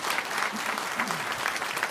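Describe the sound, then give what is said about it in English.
An audience claps their hands in sustained, dense applause, a steady wash of many overlapping claps with no pauses, fairly loud throughout. “I'm going to wait while you clap your hands there.”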